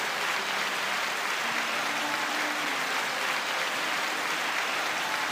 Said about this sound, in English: Round of applause again. Come on, guys, round of applause.